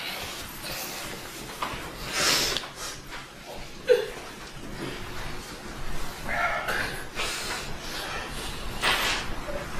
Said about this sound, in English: I notice there's a lot of sniffles out there. That's just moving.